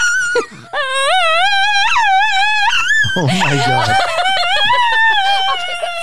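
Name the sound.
dog howling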